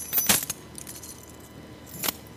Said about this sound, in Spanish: Yo tengo aquí las llaves. Yo no me tengo que extender para cogerlas.